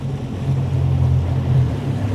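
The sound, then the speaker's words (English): A boat engine drones steadily at low pitch as the boat slows on open water in Everglades National Park, off the southern tip of Florida near the Florida Keys, with a wash of water and wind noise around it. The level holds fairly even throughout, and no one speaks. “slows the boat so we can look at a fleet of about 20 black frigate birds coasting on the wind above us.”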